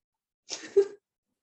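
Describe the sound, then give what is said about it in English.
A single quick sneeze from a girl, with a sharp breathy burst followed by a short voiced ending, in otherwise quiet surroundings. “Bless you”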